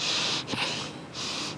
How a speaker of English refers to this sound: That clavicular breathing.